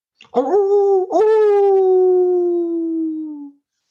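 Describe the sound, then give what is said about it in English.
A dog howls loudly: a short opening wail, a brief break, then one long sustained howl that slowly sinks in pitch and fades out. No one speaks. “Well, I suppose those should have been like sad howls or like yips or something.”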